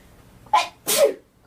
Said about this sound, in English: Ooh, I have to sneeze. It's not COVID.